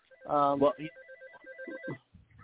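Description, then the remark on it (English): An office telephone rings with a steady electronic warble that pulses in quick repeating bursts, while a person's voice briefly cuts in loudly near the start and fainter sounds murmur underneath. “Sorry, I'm at the office, and the phones are already starting to ring, so I can't talk and answer the phone.”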